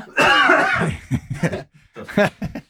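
A loud, harsh cough bursts out up close, followed by a series of smaller, choppy coughs and throat-clearing sounds that sputter and fade.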